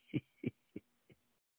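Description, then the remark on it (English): A woman's voice mimics a dog barking: four short, low woofs at an even pace, each one fainter than the last, faint and somewhat distant over a steady background hum. “You hear that lady back there barking like a dog?”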